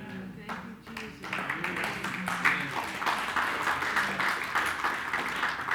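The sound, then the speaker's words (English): An audience breaks into applause after a short stretch of voice, the dense, steady clapping swelling quickly and holding at an even, loud level for several seconds. “Now, save your applause till Wednesday and just be here.”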